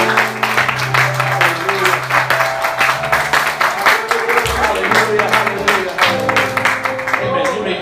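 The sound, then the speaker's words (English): An audience claps together for the Lord in a dense, sustained burst of applause lasting several seconds, loud, with a low musical drone and scattered voices underneath. “Let's give the Lord one more good hand clap.”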